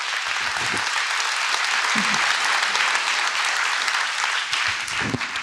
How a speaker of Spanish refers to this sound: Si quiere, aplauda, por favor, mientras que pasan los muchachos.